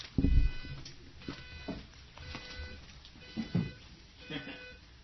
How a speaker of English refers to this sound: Okay, sorry about that. Anyway, I have all sorts of alarms and things that just want to go off at different times, and I forgot about that one.